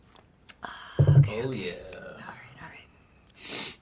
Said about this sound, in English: Let me take a sip of coffee here. Get my brain going.